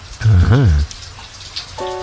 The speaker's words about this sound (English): You know, with the rain, it's a pretty precious texture.